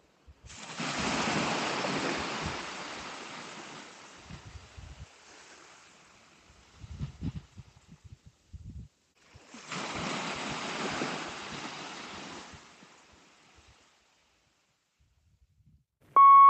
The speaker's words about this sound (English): I'll let you listen to the sea for a while.